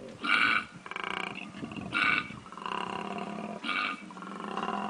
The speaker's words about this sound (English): they also make horrible noises, like just like screaming, like they're like some, like if you heard the noise a koala makes, you would think it was the most disgusting creature.